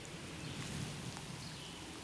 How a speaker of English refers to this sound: Shh. Listen. Do you hear the wind?